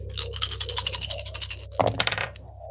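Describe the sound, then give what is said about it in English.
Busy rattling and clattering of dice tumbling across a surface for about two seconds, with a sharper burst of clicks near the end before it settles. No one speaks. “Come on, dice.”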